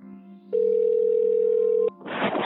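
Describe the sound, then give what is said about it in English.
A telephone line sound as a call is placed to a musician of a band: a low hum, then a single steady electronic tone holding for over a second, cutting off into a burst of loud hissing line noise. “Lance called up … from … to catch up.”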